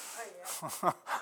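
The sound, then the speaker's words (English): A voice mimics steam escaping a pop-off valve, pushing out several short, breathy hisses in quick succession, broken up by brief voiced sounds. “And when the pressure gets enough, it steams off.”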